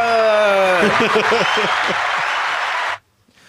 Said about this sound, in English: Hit the applause button. Hit the applause.